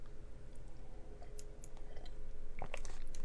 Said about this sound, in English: This is, hold on, sip of tea.